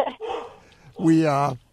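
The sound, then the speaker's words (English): A dog gives a short bark followed by a longer, drawn-out bark with a whining, tonal quality, clear, with no other sounds around it. “Whose dog is that? That's Tater.”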